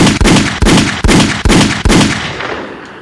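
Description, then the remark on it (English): A rapid, evenly spaced burst of about five loud gunshots, each a sharp blast ringing into the next, ending in a fading reverberant tail with no voices. “Gunshots are happening. A lot of them.”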